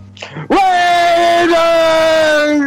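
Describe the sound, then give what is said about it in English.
A person lets out a long, loud, sustained yell that holds a steady pitch for about two seconds, following a brief murmur at the start. “Yell it up.”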